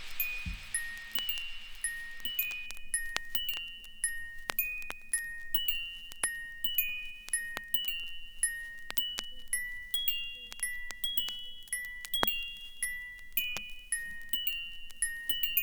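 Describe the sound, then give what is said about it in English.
Chimes ring continuously with scattered, overlapping strikes, bright high tones that ring and shimmer as each note fades into the next, fairly soft throughout with no voices. “When the chimes end, just try.”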